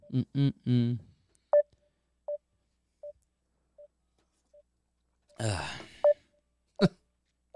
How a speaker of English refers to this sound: Lost connection. Give me a second. Wait a second.